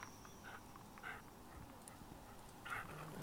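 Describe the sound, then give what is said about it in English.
A dog named Bud growls at another dog on a walk, in short, intermittent bursts, fairly faint, over a steady outdoor background hum with no one talking. “And then there's Bud growling at another dog.”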